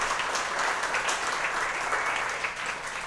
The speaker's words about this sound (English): Thanks to everybody that did their gayest and straightest from the audience. A round of applause for those guys, if you could. Thank you.